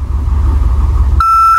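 A low, steady rumble hums for a moment, then a single clear electronic power-on beep sounds abruptly, loud and sustained, a bright pure tone with no voices. A Victor Reader device is powering back up after a force reboot.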